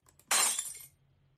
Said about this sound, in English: I don't believe it. I knocked it over and smashed my glass. I'm devastated.